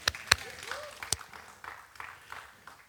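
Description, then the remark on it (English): A small audience gives light, scattered applause for cast members of the film Church in Maine: a few sharp, loud claps at the start, then softer, uneven clapping that thins out, with no voices over it. “but let's clap it up.”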